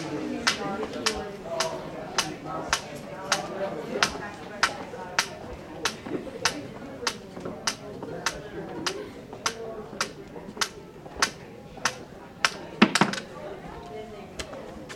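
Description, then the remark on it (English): Sharp, steady cane taps click along at a walking pace, about two dozen in all, as a man walks with his cane down a hallway lined with sound-muffling panels from a reception desk to quiet study nooks, over a low murmur of background voices that deadens as he goes. “Listen to the ambient sound deaden as he walks with his cane from the reception desk to the study rooms.”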